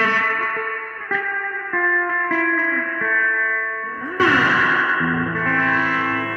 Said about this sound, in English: The Zoom MS70 CDR multi-stomp pedal. It's a chorus delay reverb. I mean, I'm not even scratching the surface. That's just the reverbs in it. And they're just awesome reverbs, man.